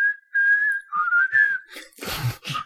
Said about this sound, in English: That'll be the fucking theme. All of us whistling it.